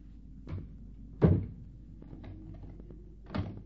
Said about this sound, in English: You locked the door after your sister? Yes, I did.